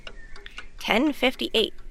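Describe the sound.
A few faint, evenly spaced ticks from a grandfather clock, then a voice imitates the ticking with four quick, punchy 'tick-tock' syllables, louder.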